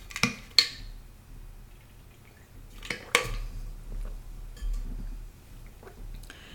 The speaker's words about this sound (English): Ooh, I feel like I need to drink some water. Excuse me.